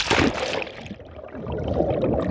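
Muffled underwater rumble recorded while diving in Lake Atitlan, western Guatemala, a volcanic caldera lake with a natural hot spring; bubbling and gurgling, a dense low churning wash that swells at the start and holds steady, with soft sloshing textures and no voices.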